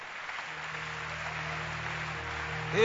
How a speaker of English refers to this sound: Keep clapping.